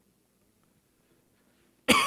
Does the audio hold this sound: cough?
yes